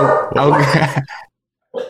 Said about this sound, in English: One second. Fucking dog.